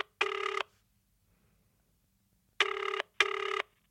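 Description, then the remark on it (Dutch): A telephone ringback tone on an outgoing call to the club Audax Italiano: three steady, buzzy electronic rings, one alone, then a pause and two close together, with nobody answering and no talking. “Ik bel die club op.”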